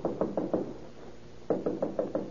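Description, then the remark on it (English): Police officers knock firmly on the door of an escaped convict's room at a rooming house in Sacramento's Tenderloin: a quick burst of four raps, a pause of nearly a second, then a second, longer volley of about six raps. No voices. “Chief McShane leads the officers who surround the place and finally approach the door of the escaped convict's room.”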